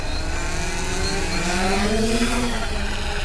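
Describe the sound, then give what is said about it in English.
A foot-long drone, launched by hand from a boat's bow by scientists, whines steadily, the buzzing pitch climbing and wavering as it lifts 200 feet into the sky and flies above a whale, over a constant rush of low wind noise with no voices. “She holds the foot-long drone above her head, and Moore launches it out of her hands, 200 feet into the pale blue sky.”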